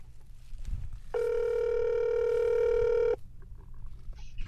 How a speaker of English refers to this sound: let's get Laurie on the line here and see if this works here. I'm going to get her on my phone.